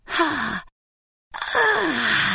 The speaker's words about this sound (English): He yawned and slowly entered hibernation with a beautiful lullaby going on.